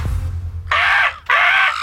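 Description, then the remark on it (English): A person imitates a crow with two loud, raspy caws in quick succession, each about half a second long, following a brief low rumble at the start. “Eat these crows! Eat these crows! Yo, the fact that you're getting good at that is what's scary the most, yo.”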